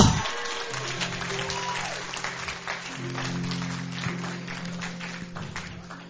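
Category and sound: crowd, audience clapping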